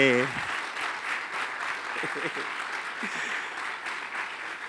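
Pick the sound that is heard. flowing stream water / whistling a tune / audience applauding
audience applauding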